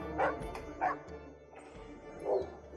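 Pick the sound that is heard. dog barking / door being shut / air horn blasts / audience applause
dog barking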